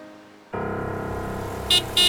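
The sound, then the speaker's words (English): After a brief hush, the engine of Leonardo's car suddenly roars in steady as it races up to a farmhouse on June 2nd, 1944, and two quick, bright horn toots sound near the end. No one speaks. “On June 2nd, 1944, Leonardo's car came racing up to the farmhouse.”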